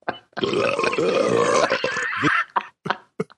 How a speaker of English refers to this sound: I've isolated it down to just the burps.